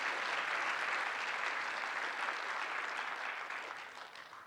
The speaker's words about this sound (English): I could use a little hand clap about right there. I need a little support.